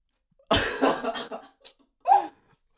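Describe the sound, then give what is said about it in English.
A harsh fit of coughing: a rough run of coughs, a brief pause, then one more raspy cough to finish. No talking. “That cough's coming back.”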